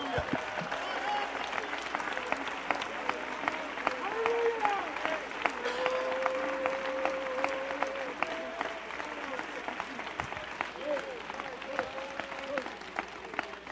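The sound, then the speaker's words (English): A church audience claps for the Lord during a sermon, steady for the whole stretch, a dense, fast patter of many hands, with scattered shouts and sustained voices calling out over the applause. “Oh, give the Lord a hand clap.”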